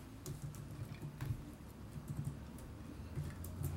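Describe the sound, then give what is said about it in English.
Rapid, irregular clicking of a computer keyboard typed on while someone Googles and checks their internet history, fairly quiet, with short bursts of keystrokes continuing steadily for a few seconds over a low background hum. “Sorry for the momentary pause and the clicking in the background. It's because I was Googling, or I was checking through my internet history for the answer to this next question”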